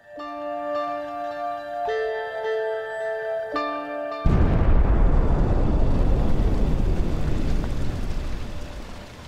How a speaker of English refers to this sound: However, by lunchtime it was clear that something was very wrong as Mount Vesuvius began to erupt.